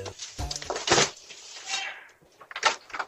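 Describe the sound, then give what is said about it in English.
A front door bangs open with clattering, knocking thuds as a woman runs out to confront a porch pirate who stole two packages, followed by a rushing scrape and a couple more sharp knocks near the end. “And finally, what you're about to hear is a woman running out of her front door to confront a porch pirate who just stole two packages caught by their security doorbell.”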